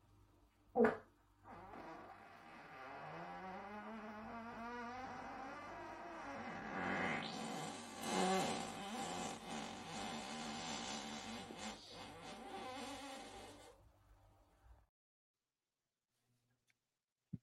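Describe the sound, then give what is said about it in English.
A long, drawn-out wet fart sputters for more than ten seconds, its pitch rising and wavering with bubbly, flapping texture, loud, after a brief sharp pop at the start. “Yeah, that end was a little wet, huh? The middle was more wet, I think, than the end.”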